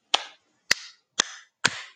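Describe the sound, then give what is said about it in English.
Four sharp hand claps in a slightly uneven rhythm, each a crisp, bright slap with a brief ringing tail. They are fairly loud, with silence between them and no talking. “Had to clap it up.”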